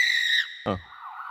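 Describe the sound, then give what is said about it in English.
A high, steady fire department siren wail with bright harmonics, broken by a short rough burst before the tone returns at a lower pitch and fades slightly. No voices. “Sirens are on our end. This is a great one of like, fire department.”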